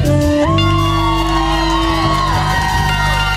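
A festival crowd cheers loudly at a live performance at Yonder Festival, with overlapping shouts and rising whoops over a steady, sustained tonal drone throughout the few seconds.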